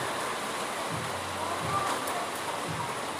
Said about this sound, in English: So I always wanted to tell you the feel of the rain, how the mud smells so fresh and so earthen. It's night, it's evening, it's raining, it's very pleasant and beautiful.